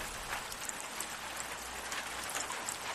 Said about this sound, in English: I'm sorry, the sound of the rain is just hypnotizing me,